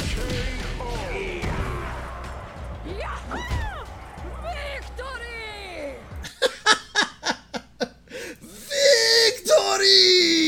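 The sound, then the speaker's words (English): A fighting game character's wind-up scream, with English voice acting, played at normal game speed: a woman's strained, wavering cries that rise in pitch, then a rapid run of sharp, rhythmic vocal bursts ending in a loud, noisy blast. “And then put the speed to normal, because her wind scream is amazing.”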